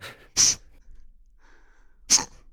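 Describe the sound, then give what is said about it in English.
A voice imitates two short, stifled, swallowed sneezes, each a sharp, hissy burst quickly choked off, about two seconds apart with near-silence and a faint breath between them. “You know, when you swallow your sneezes, which they tell you not to do, but it's great.”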